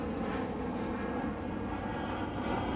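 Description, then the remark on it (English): A steady, broad roar of the engines of two airplanes passing overhead, continuous and fairly loud throughout with a rumbling low end and no voices. “Ah, there's two planes flying.”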